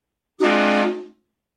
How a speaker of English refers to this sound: Hit the train horn for a second, please.